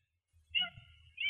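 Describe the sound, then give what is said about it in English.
A female cat named Dee Dee, which has just jumped up, meows: one drawn-out, fairly quiet meow, then the start of a second one right after. No one is talking. “Oh, sorry, my cat just jumped up here. She wanted to say hello to you.”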